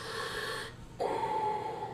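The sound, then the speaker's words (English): A voice imitates heavy, hissing mask breathing: a long rasping inhale, a brief pause, then a louder whistling exhale. “Why do you guys include the breathing?”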